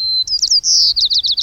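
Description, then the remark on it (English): A white-crowned sparrow in Oregon sings its regional dialect alone, clear: a long pure whistle, a brief warbled flourish, then a rapid series of buzzy trilled notes repeated evenly to the end. “Regional dialects arise because young white-crowned sparrows may learn their song from birds other than their parents.”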